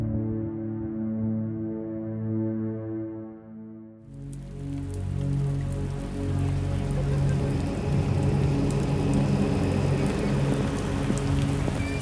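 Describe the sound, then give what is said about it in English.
A low, sustained musical drone plays alone at first, then steady, heavy rain comes in, pattering densely and continuously on city streets beneath the lingering tones. “It was raining again. I walked the drenched city streets as I did every night,”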